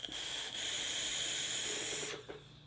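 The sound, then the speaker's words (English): A steady sizzling hiss from a vape coil firing runs for about two seconds, then cuts off abruptly, leaving a faint quiet tail. The coil is 22-gauge at 0.19 ohms, in a Cookie atomizer from Telios on a single-18650 mechanical mod. No one speaks. “I just like vaping them.”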